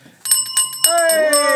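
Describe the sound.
A bright metallic bell rings several times in quick succession, close and loud, with a voice briefly sounding underneath toward the end.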